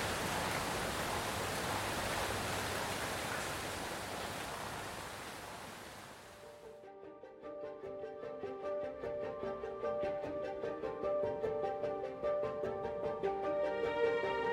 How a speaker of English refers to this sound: she succumbed to the now gentle rolls of thunder, the soft tapping of the rain on the windshield.